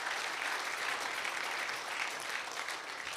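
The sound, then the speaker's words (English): An audience at a Pike County Ministerial Alliance church service claps together as a hand clap of praise to the Lord, in sustained, dense applause, a steady wash of many hands at an even, fairly loud level throughout, with no voices standing out. “If you're thankful for the salvation that we have through the blood of Jesus, would you just join me and give him a hand clap of praise tonight?”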